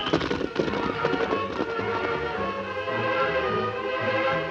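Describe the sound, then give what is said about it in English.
Rapid hoofbeats of galloping horses thud in a quick, uneven rhythm, strongest in the first couple of seconds, mixed with sustained dramatic music that carries on steadily to the end. “We go to Whispering John's place and hide our horses near his stable.”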